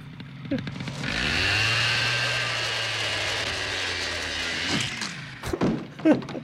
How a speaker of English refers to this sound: I love how like the post like does a little dance at the like as the chainsaw. Yeah, it just spins off. Yeah, and then just goes rolling down the stairs.